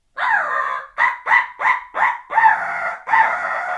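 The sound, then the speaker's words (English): A crow call, used by a hunter when turkeys are in the area, blown in a quick series of about seven loud, raspy caws: a drawn-out first note, then short choppy ones, ending with two longer harsh calls, with no talking. “crow call is something I use when I know turkeys are in the area”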